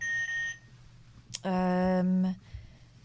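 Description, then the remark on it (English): A short electronic tone sounds first, then after a brief click a loud, harsh buzzer blares for nearly a second, like a game-show buzzer, dominant; it is a buzzer sound recorded for playing a mystery object game. “But I want to play it with buzzers.”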